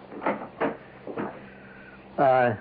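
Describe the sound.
A front door being opened, heard as a few sharp clunks and rattles spaced out over a couple of seconds, followed by a voice speaking loudly.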